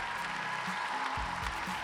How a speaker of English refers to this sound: But please applaud for the poet.